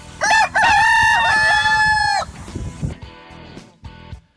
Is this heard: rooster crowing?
yes